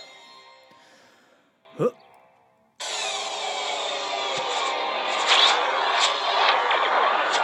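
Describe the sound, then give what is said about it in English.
A brief sharp whoosh, then a loud, harsh buzzing hum of a lightsaber cutting through a door kicks in abruptly and carries on steadily, crackling and sizzling. “Little fucker nearly cut the door in half”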